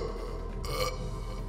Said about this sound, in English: winner of the first World Burping Championship.